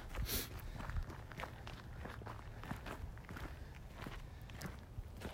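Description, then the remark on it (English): Steady footsteps crunch and tap along at a walking pace, moderately loud, with a constant low rumble of background noise and no one speaking. “Just listen to the footsteps till we figure out whether Bill Nighy is alive or dead.”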